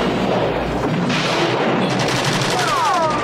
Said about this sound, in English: Machine guns and everything. Shotguns. Shotguns, machine guns.